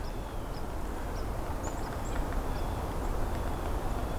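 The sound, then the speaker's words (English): Tree sparrows call in the distance, a scattering of faint, short, high chirps repeating at irregular intervals over a steady, loud rushing background noise. “There's some calling tree sparrows in the distance as well.”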